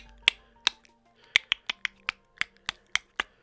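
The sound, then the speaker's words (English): A series of sharp, dry clicks, about ten in quick succession with slightly irregular spacing, crisp and bright, standing alone with no voices. “You can hear the clicking seems to be getting louder.”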